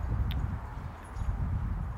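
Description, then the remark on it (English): Wind buffets a microphone with a bare-bones windscreen on a balcony on a moderately windy day, a continuous low, rumbling roar with uneven thumping gusts that swell and ease over two seconds; no one speaks. “And we're getting a little bit of wind noise, but nothing major.”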